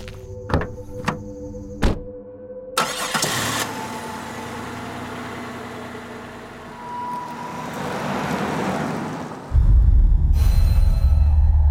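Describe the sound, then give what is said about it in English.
A few solid door thunks as people climb back into a truck, then the truck engine cranks and catches, idling and revving as it turns around and pulls away to head back towards New Jerusalem, ending in a loud, low rumble. No talking. “You all walk back kind of keeping an eye on the forest around you, being a lot more aware of all the different noises, or lack of noises, as you all climb back into the truck to flip it around and head back towards New Jerusalem.”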